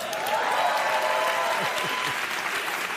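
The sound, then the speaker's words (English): A crowd claps steadily for a few seconds, a dense, sustained wash of applause with a few faint cheers mixed in, filling the whole clip at an even loudness. “You don't have to work that hard to get them to applaud.”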